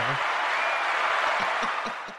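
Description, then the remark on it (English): A burst of crowd applause, dense and steady clapping from many hands, holding for a couple of seconds before tapering off at the end. “I'm cutting you guys off with the applause.”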